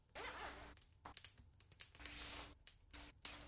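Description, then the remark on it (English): A windbreaker jacket zipper is zipped up in several quick, raspy strokes, fairly loud, with short pauses between the bursts and no talking. “Unzipped, it's okay. It looks pretty good. Zip it up.”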